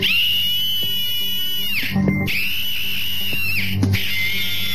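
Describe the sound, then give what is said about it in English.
A personal safety alarm, set off by pulling its tassel, blares a piercing, shrill electronic tone that wavers slightly in pitch, holding steady and loud with two brief dips before resuming. “And when you feel threatened, simply pull the tassel.”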